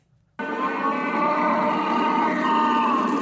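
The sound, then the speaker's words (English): A voice imitates the roar of a pet lion that was being fostered and kept outside: one loud, sustained, rough growl that starts abruptly and holds steady for about three seconds with a gravelly, harmonic tone. “And every time I'd poke my head out, the lion would look at me and go.”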